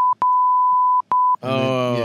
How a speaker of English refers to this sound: And then when we're watching the movie, they have to bleep it all out. So you think it's Morse code.